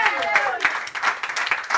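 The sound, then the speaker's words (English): A church audience claps their hands in praise of God in loose, uneven bursts, a steady patter of sharp slaps, while a voice carries on over the top. “Clap your hands, somebody, and give God praise.”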